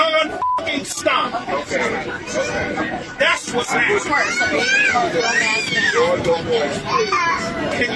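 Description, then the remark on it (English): A young child wails and cries loudly and continuously on an airplane flight, with overlapping voices chattering and a short electronic chime near the start. “There's a child crying on the flight.”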